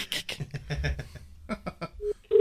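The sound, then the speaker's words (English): A loud, steady electronic ringback tone starts near the end, just after a brief tone blip and a run of clicks and taps, like an outgoing phone call connecting. “It's ringing.”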